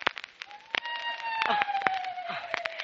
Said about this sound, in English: Just a hoot owl, I guess.